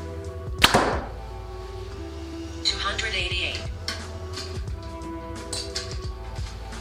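A sharp, loud release of a Hoyt Ventum 30 compound bow (70 pounds, 29-inch draw, 85% let-off) shooting a 450-grain arrow near the start, a single snapping twang with a brief rattling ring, followed by a hissing hum and faint mechanical clicks.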